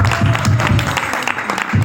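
An audience applauds with dense, steady clapping that holds at an even loudness for the whole two seconds, with a low rhythmic hum pulsing underneath.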